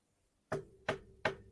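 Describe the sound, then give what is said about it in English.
Three quick knocks on wood in a steady, even rhythm, each a sharp, hollow rap with a short resonant ring, done while talking about the Mariners' wild card chances. Fairly loud, with no talking. “Has me knocking on wood.”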